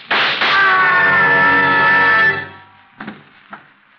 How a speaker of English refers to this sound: What was that? I heard a scream. Downstairs.